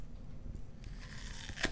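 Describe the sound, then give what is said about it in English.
A crisp crunching bite into a crisp apple, a burst of crackling and tearing texture that ends in one sharp snap. No one speaks. “He has the crispiest apples.”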